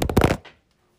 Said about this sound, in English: Sorry, I dropped my phone for the second time today. I have to hold my phone.